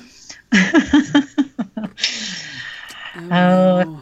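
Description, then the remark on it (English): A burst of rhythmic laughter gives way to a long, loud, breathy gasp, capped by a short voiced exclamation, all performed by one person's voice. “I felt like that deserved another gasp.”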